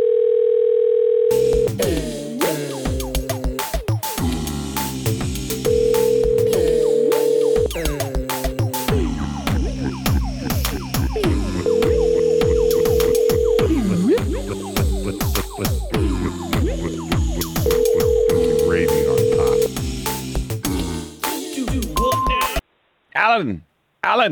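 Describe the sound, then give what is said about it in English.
A telephone rings over and over in evenly spaced electronic tones, going unanswered, with voices and busy background sound layered on top until it abruptly cuts off. “pick up the phone. Alan, it's important.”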